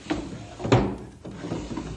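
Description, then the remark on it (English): A wooden desk drawer slides open with a couple of clunks and knocks, followed by soft rummaging and shuffling of items inside as someone searches for a small package, with no voices. “It's around here someplace. I think in one of these desk drawers.”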